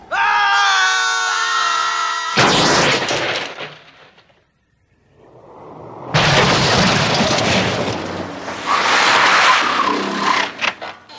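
A loud, high-pitched tire squeal from a skidding car cuts off abruptly into a harsh burst of noise, then a brief lull before a long, roaring, rumbling commotion of crashing and engine noise.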